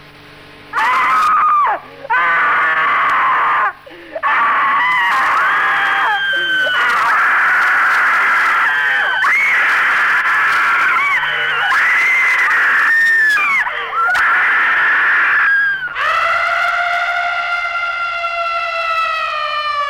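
A crowd screams in terror: loud, shrill, wavering shrieks in repeated bursts with brief gaps, ending in one long sustained high wail.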